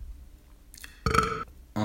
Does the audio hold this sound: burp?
yes